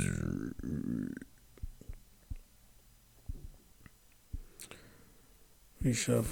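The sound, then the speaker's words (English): Tarot cards being shuffled for a Tarot Card Battle game, a string of crisp taps and soft papery flicks spaced unevenly, with a voice speaking briefly before and after. “We shuffle. 1, 2, 3, flip.”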